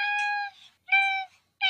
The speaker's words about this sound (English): Oh, a cat. 100%. Yeah, it was a cat.